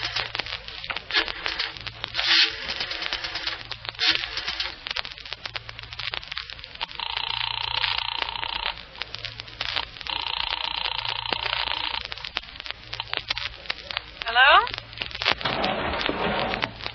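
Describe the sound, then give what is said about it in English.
A telephone being dialed in a public phone booth in a corner drugstore: rapid clicking and rattling, then two long, steady buzzing tones a few seconds apart, all over a constant hum. “And a tall, distinguished gentleman walks quickly, quietly into the corner drugstore, goes to the row of public phone booths, and now, a moment later...”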